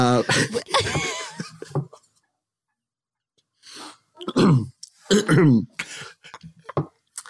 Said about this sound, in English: You even clear your throat in a Victorian fashion. You do.